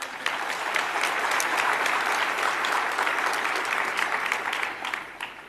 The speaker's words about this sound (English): This beats last year's convention record by 1%. So I'm glad you applauded before I tell you this.